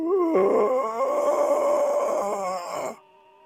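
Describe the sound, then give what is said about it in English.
A long, drawn-out zombie-like groan of approaching ghouls, low and guttural with a wavering, moaning pitch, sustained for about three seconds before cutting off abruptly. No one speaks over it. “What is that sound? That's the Walking Dead.”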